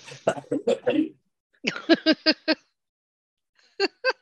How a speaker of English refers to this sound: God, that's the old whooping cough you've got there.